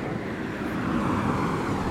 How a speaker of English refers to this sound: So I'm under a little awning. It looks like a bus stop kind of place, but it's not. It's a nothingness thing. I don't know, it's just some benches under a little roof. It's a little late at night. It's like almost 10 o'clock at night and it's raining